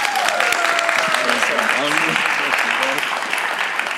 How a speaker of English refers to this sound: Would you clap for him one more time?